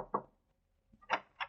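Three muffled knocks on the door of apartment 208 in a two-story apartment house, one, then a pause, then two more close together, fairly soft, with no voices.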